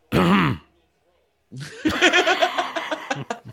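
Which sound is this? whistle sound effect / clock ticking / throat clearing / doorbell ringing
throat clearing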